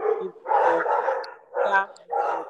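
Dogs bark repeatedly in a rapid, overlapping series of loud yaps and woofs, with several bursts in quick succession and no talking.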